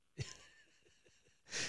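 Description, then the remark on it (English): A man's breathy yawn: a sharp, strained intake that stretches out into a drawn, airy tone, a quiet pause with faint clicks, then a loud rushing exhale at the end. “He says through a yawn.”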